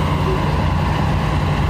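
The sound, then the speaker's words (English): A large tour bus engine idles with a steady, deep rumble and a low droning hum, holding constant throughout with no pauses or changes in pitch. “So this is Lunchbox walking up to a tour bus.”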